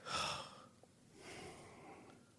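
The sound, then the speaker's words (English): Two heavy, breathy exhalations blown into a microphone, a loud rushing burst followed by a softer, longer one, with no speech. “Well, sorry, I'm breathing. I'm breathing heavy.”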